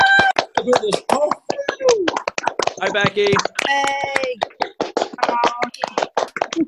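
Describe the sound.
Clapping from an online audience over unmuted microphones, a big round of applause after the host unmutes everyone: dense, uneven claps that crackle sharply throughout, with several voices calling out brief greetings over them.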